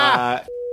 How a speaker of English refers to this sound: but all I got was a beep.